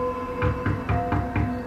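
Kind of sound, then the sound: impact, knocking on a door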